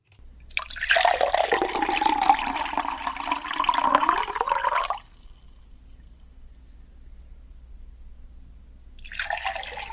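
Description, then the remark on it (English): Water is poured in a steady, splashy stream for about four seconds, fairly loud, then stops; after a quiet pause the pouring starts again briefly at the end. “This is just pouring water.”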